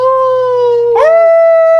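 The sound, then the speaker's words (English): A person imitates a wolf with one long, loud, sustained howl, its pitch wavering and breaking sharply partway through before carrying on slightly higher. No other voices or sounds are present. “So you do another howl.”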